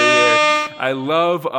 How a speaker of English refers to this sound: Listen, this is very much an air horn. It's like, bah, bah, bah, bah, very air horn-y here.